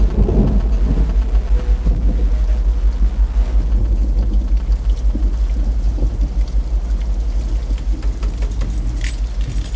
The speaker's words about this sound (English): You'd better get out of the rain, or you'd be soaked to the bone.